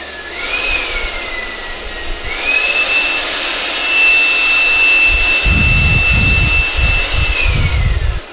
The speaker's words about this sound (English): and there is this thing, this wind machine thing